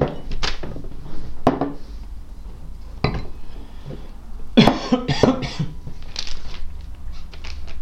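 human body sound, coughing

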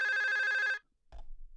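household object, telephone ringing

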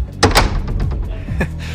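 household object, bedroom door slamming shut

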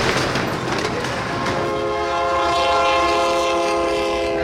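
vehicle, train passing with horn

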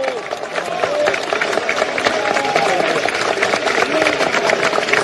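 crowd, crowd applause

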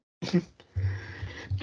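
human body sound, sneeze

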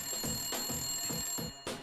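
signal or alarm, telephone bell ringing

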